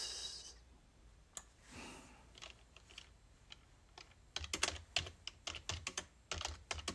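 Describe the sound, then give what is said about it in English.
Quick, irregular clacking of laptop keys as someone looks up a Bible verse to read, starting with a few scattered taps and building into a dense burst of typing in the second half, fairly quiet with no talking. “Sorry, you guys hear me typing on my laptop.”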